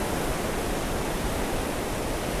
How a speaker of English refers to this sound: But like, I was recording a podcast in the ocean. That's not normal, right?